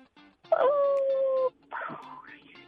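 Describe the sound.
A child on a phone call imitates the sound of her favorite firework: a loud, steady, high whistling tone held for about a second, a brief pause, then a breathier, rising whoosh.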